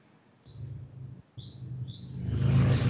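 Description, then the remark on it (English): A bird chirps three times in quick, high, thin notes, set against the low engine rumble of a Harley motorcycle that grows louder and rougher toward the end. “can you hush for just a second so we can record those birds?”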